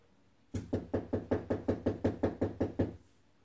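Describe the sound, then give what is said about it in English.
A rapid, steady series of about a dozen firm knocks on a front door, evenly spaced over a couple of seconds and fairly loud, with no voices. The knocking is from someone at the door looking for somebody at the wrong house. “Yeah, I mean, I had somebody at the door.”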